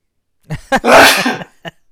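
A single loud sneeze: a couple of quick, sharp catches of breath, then a forceful burst of air that fades out, with a short click at the end. No talking.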